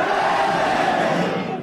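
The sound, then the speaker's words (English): A large crowd at a show cheers and roars loudly and steadily, a dense wash of many voices that holds for under two seconds before easing slightly at the end. “it's clearly going to be impossible to get through the show if you're going to keep cheering”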